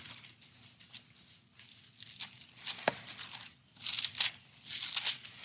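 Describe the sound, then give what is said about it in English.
Many thin Bible pages rustle and flip at once, an audience leafing through their Bibles to John 6 in overlapping bursts of crisp, papery swishes that swell and fade, with no one speaking. “Two back-to-back weeks, they were, our guest speakers are loving the pages turning.”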